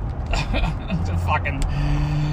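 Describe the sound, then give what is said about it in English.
Steady low road rumble and a humming engine drone from inside a car being driven on a road right behind a truck full of tree branches, continuous throughout, with a voice briefly talking over it. “I'm driving right now, if you guys can't tell, but yeah, I'm right behind a truck full of tree branches.”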